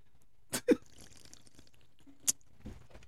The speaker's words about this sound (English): For all those people that hate the slurp, you're welcome.